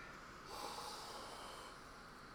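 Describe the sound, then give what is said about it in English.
A deep, airy inhalation drawn in through the nose from cupped hands with peppermint oil rubbed on the palms, a steady breathy rush lasting a couple of seconds with no talking. “Where we get peppermint oil on our palms of our hands, rub it in to make it warm so it activates a bit more, and then cup your hands and then breathe in twice through your nose.”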